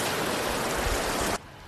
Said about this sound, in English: So hope you're enjoying the waves as much as I am.